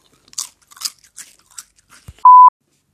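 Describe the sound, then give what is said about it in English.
Several dry crunches of someone biting into a potato crisp to finish a crisp tasting, irregular bursts spread over two seconds, followed by a brief steady electronic beep. “So that's the end of the crisp tasting segment. Thank you very much. Give it a crunch to finish off.”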